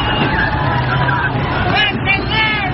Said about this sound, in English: People yelling, chucking rocks, et cetera, et cetera.